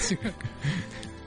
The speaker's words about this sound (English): Excuse me for clearing my throat into the mic.